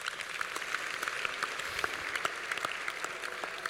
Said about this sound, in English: I thought you'd be clapping your hands for the church.